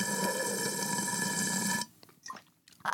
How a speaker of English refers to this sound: And in case y'all don't see it, I'm unscrewing my coffee cup and sipping it. You should have just said there's tea in there.